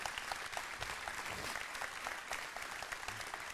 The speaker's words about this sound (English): If you've been married for over 20 years, stand up. Give them all a hand clap.